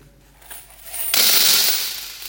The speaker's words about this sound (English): Make a big noise. No, that didn't make nearly as big a noise as I hoped it would. But you get the point. There was a big metal pot, they would put their coins in it, and it would draw attention to their offering.